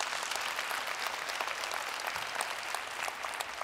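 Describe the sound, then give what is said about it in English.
An audience applauds steadily, a dense wash of many hands clapping at an even level for several seconds with no voices over it, applauding to show how many have prayed for and received healing in their bodies. “Okay, just a quick, by round of applause, how many of you verifiable you have prayed for and received healing in your body? I want you to just, by applause.”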